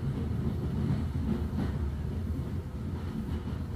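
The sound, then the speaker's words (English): A train engine pulls its carriages across an old brick bridge high over a glen, producing a continuous low, heavy roar with faint rhythmic clatter, loud, with no voices present. “suspending itself high over the glen, pulling the carriages through behind it.”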